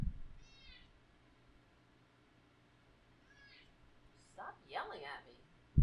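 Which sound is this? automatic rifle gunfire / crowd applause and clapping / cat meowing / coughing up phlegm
cat meowing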